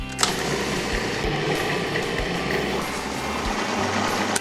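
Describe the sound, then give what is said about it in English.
A blender runs steadily, blending hummus for about 4 or 5 minutes while cold water is drizzled in, with a loud, continuous motor whir and a dense grinding hum that holds unchanged throughout, with no voices. “I'll blend this up for about 4 or 5 minutes”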